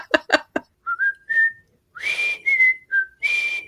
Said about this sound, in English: Whistling is your territory. Yeah, my territory. The Andy Griffith theme. I've got that down. Yeah.